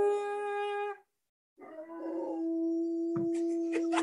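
A dog named Diamond howls in long, sustained tones like singing, breaking off briefly before starting again in a steady, wavering howl, fairly loud.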